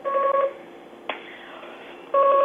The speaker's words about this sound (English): I am getting another call.